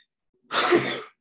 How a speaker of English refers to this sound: I'm going to sneeze.